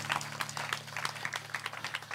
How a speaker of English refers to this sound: You can clap a little bit if you feel like the Spirit moves you.